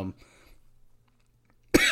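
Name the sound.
coughing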